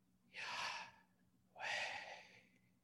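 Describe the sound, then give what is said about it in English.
Two slow, airy breaths follow one another, a long inhale and then a long exhale, clear against quiet, with a short pause between them and no talking. “Scholars think that Yahweh is the sound of breathing.”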